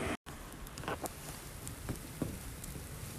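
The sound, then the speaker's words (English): A fire, lit to boil water, crackles and hisses steadily, with scattered sharp pops and snaps breaking through a constant rushing noise. It sounds fairly soft, and nobody speaks. “You hear that? You hear that? That's fire.”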